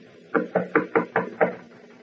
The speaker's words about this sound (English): Ah, here is her suite. I will knock.